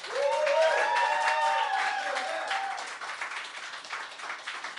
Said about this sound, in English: I'm glad we all ignored her request not to clap in between. That is impossible not to.